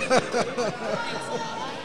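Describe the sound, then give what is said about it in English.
Loud, overlapping crowd chatter at a Parramatta match before kickoff, with several voices talking and calling out at once, a steady rowdy babble with bursts of louder shouting near the start. “Hey, getting a bit rowdy out there.”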